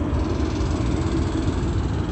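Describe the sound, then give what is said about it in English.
A steady, low roar of plane engines passing overhead above the B&G Plaza at 6:32, a continuous rumbling drone that holds an even loudness throughout, with no voices. “All right, it is 6:32, and that's the state sounding plane engines as I capture that fake moon right over the B&G Plaza, which I also took a picture of.”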